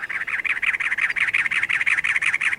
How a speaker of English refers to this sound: Now, a cactus wren announces itself atop a barrel cactus.